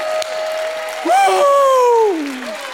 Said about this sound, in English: If God has brought you out of anxiety, give him a hand clap. If God has delivered you, give him a hand clap. If God has healed you, if God has overcome any situation in your life, give him some praise.